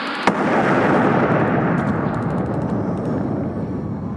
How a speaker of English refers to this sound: Best put the phone down. What's that? One of Great Britain's best contributions to the war effort. It's 10 pounds of explosive on a homing signal hidden inside that phone.